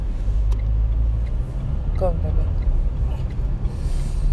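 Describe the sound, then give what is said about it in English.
Busy road traffic rumbles steadily and loudly throughout, a dense low roar of engines, with a brief muffled voice rising over it midway. “On, this traffic's mad out here.”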